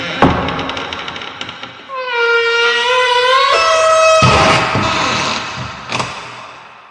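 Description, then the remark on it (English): A mortuary door creaks open with a long, drawn-out squeal of the hinges, followed by a heavy thud and a lighter knock, with no talking. “Unless suddenly this door just...”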